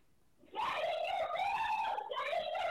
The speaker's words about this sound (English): Okay, yeah, she's just screaming, like, get here now. Yeah, well, there's plenty of those screams, like 45 minutes of them.